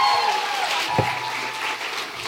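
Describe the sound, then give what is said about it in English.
Steady live audience applause, a dense wash of many hands clapping at an even loudness throughout, with a brief low thump partway through. “Big round of applause for Sarah Rose.”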